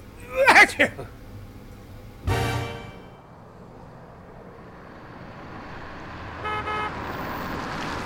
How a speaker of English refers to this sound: Don't honk, Harry. Babs will call the cops.